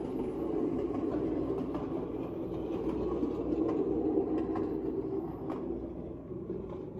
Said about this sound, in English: Or here comes another plane, hang on.